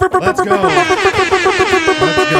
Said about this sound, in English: Well, you don't know how good that is to hear, because last night on this very show, nobody had an air horn.